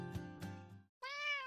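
A cat meows twice, clear: a long, drawn-out harmonic cry with a couple of swells, a brief pause, then a higher, shorter meow. No one speaks.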